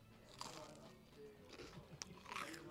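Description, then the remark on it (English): Loud crunching as crisp food is bitten and chewed, with several sharp cracking bites spread across the few seconds and no talking. “Crunchy.”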